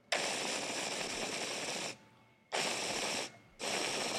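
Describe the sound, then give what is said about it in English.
A handmade smoking piece held by a microphone and pulled on three times: loud, rough, rattling rumbles, a long draw followed by two shorter ones with brief quiet gaps between. No one talks. “These things really have like a little jet engine in them, the way they rumble.”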